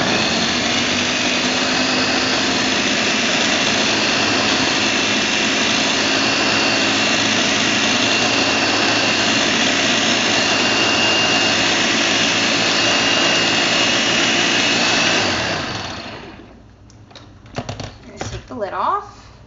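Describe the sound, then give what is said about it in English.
A blender roars steadily for about fifteen seconds, a loud, dense motor whine grinding fruit and spinach before any liquid is added, then cuts off abruptly, leaving a few soft clicks and knocks. “And basically, I'm going to blend it for about 20 to 30 seconds. Okay. Just to grind up the fruit and spinach.”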